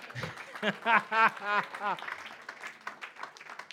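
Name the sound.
audience clapping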